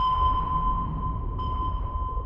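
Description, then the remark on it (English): A sustained, pure submarine sonar tone, a pulse of sound sent into the water to echo back, rings steadily over a deep, rumbling underwater hum, with a faint brightening midway through. No voices are present. “You hear those pings? That's our sonar emitting a pulse of sound into the water and listening for it to echo back.”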